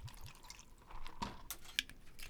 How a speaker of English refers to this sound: And then the other drink is Vail Vodka. Once again, pour some in here.